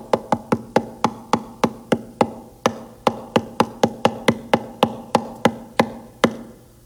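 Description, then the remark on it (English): Sharp knocks repeat steadily, roughly three per second for about seven seconds, each one loud and quickly fading, over a faint low hum with no voices. “Was that annoying? He's constantly knocking. He's always knocking.”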